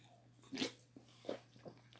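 Sips of a raspberry lime seltzer from a can: a few short, soft slurping and swallowing sounds spaced apart, ending with a sharper burst, over a faint steady hum and no talking.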